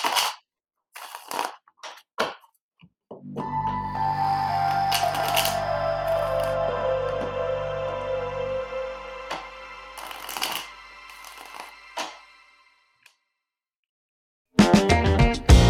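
A deck of tarot cards is shuffled seven times in a series of quick, papery riffles and snaps, fairly loud, with a sustained ringing musical tone swelling beneath them partway through; no one speaks.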